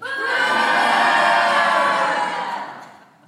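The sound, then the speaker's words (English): An audience boos together in a loud, sustained swell of voices that holds for about three seconds before trailing off, voting that Charles Manson should go to hell. “Okay, if you want Charles Manson to go to hell, boo.”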